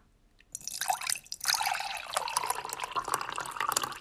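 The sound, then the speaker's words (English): Cold brew coffee pours in a steady, splashy stream after a brief quiet start, with a soft liquid gurgle and trickle continuing; no one speaks. “I'm able to like have cold brew and oatmeal with lots of fresh fruit every morning, and it's been pretty good. So listen to this pour.”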